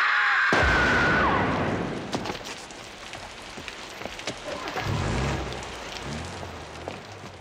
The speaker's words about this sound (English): In many ways, episode one, the rain is a character. The rain continually falling throughout the episode, but then again, it might have just hit the wires where they yanked them.